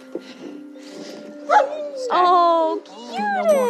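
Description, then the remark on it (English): Several working search dogs from Canine Alert Search Teams, trained to find cadavers and live people, bark and whimper, with yips and high whining cries rising and falling over a few seconds, mixed with a steady background hum. “So let's meet the dogs. Can I pet them?”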